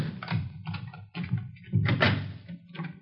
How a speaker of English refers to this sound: Oh, all right. Let me get the door open.